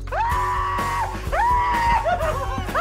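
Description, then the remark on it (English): Several people scream loudly and continuously at spiders, long sustained shrieks overlapping one another, with a brief break before the screaming surges again, intense, over a low rumbling background. “Okay, guys, if you could please stop screaming, I think you're starting to freak the spiders out a little bit.”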